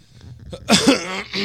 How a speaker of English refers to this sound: Let me clear my throat.